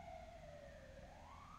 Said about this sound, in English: Let that siren go by.